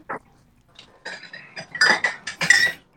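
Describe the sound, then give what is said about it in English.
Ceramic mugs clink and knock together as they are taken out, in a quick, irregular series of bright, sharp taps, growing busier and louder toward the end, with no talking. “Are you guys getting the mugs out?”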